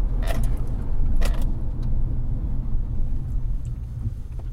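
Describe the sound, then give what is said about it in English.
Steady, deep road rumble from inside a moving car with the aircon off, the wheels and dry tyre tread droning continuously over the surface, with a couple of brief rattly clicks early on and no one speaking. “the sound of the wheels and the dry tread. Yeah, tire noise.”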